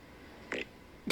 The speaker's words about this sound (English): Did you hear that? Yes. Is that a fart? She's, yes. Oh, she God. Just sent me a recording of her farting. Oh, God. And it sounded like she shit her pants.